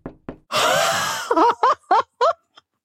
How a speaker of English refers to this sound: Do I need to knock on wood? Yes, I would appreciate that.